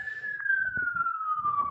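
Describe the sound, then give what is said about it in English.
An emergency vehicle siren wails steadily in a residential neighborhood, its tone slowly falling in pitch as it passes, with faint rumbling traffic and background noise underneath. “Oh, you hear the sirens? It's just my neighborhood.”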